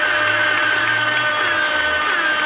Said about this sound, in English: It's been a while since I did the air horn. Yeah, tool-assisted introduction there.